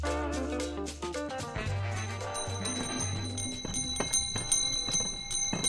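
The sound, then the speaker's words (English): Ice cream cart bells in Chicago ring in a quick series of bright, high-pitched jingles, the strikes growing sharper and more frequent toward the end over a steady low tonal hum. “It's that season when ice cream cart bells ring across Chicago sidewalks, parks, and beaches.”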